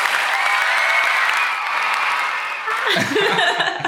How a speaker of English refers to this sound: Insert cheer here.